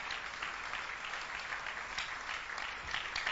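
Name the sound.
audience clapping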